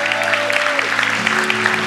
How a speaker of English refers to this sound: Let's welcome everybody that's joining with us online. Welcome to all of you. Come on, let's give them a big round of applause.